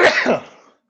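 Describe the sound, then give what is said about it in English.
A single sharp sneeze bursts out, loud at first, then trails off into a breathy fade within under a second. No one speaks. “That's you sneezing at watching the NFC East at teams.”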